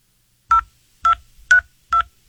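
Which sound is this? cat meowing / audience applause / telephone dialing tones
telephone dialing tones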